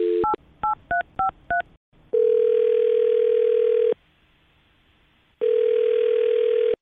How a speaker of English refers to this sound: I'm going to call him right now, see if we get him on the phone and find out what happened, okay? Okay. All right, here we go.